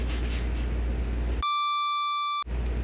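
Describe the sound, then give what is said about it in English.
A single steady censor bleep, a bright electronic tone lasting about a second, bleeps out a name, abruptly cutting into a noisy, muffled background and then giving way to it again. “We can beep it out.”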